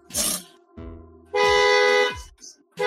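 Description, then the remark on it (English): A car alarm blares in a repeating electronic cycle: a harsh buzzy burst, then a lower pulsing tone, then a loud sustained high-pitched wail before the pattern starts again. “That's the sixth time that fucking car has gone off in the last hour.”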